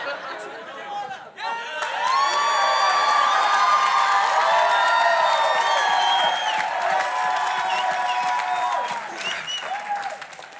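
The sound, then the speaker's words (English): A church audience bursts into loud, sustained applause with cheering and excited voices after the speaker drinks some water, holding steady for several seconds before tapering off slightly at the end. “I just drank some water and everyone's happy about it.”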